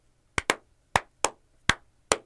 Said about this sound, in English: Whoa, hold on, hold on, hold on. Slow clap. No, slow down, slow down.